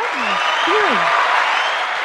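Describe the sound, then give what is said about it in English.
A steady wash of crowd applause fills the whole moment, dense and even, with a few faint voice-like murmurs sliding underneath the clapping. “Now, Where's the crowd noise?”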